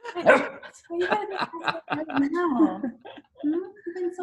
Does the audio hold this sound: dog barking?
yes